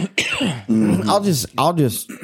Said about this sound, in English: Sorry for coughing right into the mic. I'd do that again next time, please.